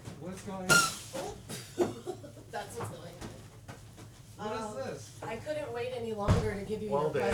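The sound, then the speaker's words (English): The front door of a house clunks open with a couple of sharp knocks and rattles as someone arrives at the door, while several people talk and murmur throughout. “Hey, someone's at the door. Will you grab that real fast?”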